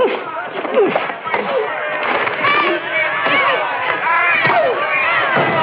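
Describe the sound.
Sharp punch impacts at a boxing fight, including a vicious right cross, land amid a loud, continuous roar of a cheering crowd, with several thudding hits scattered through the din and shouting voices mixed in.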